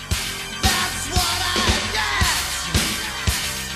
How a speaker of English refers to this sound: Squealing synths in the background there. A lot more going on here in this version.